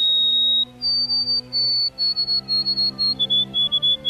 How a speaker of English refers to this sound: Zonotrichia albicaulis, the white-throated sparrow.